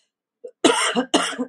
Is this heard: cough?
yes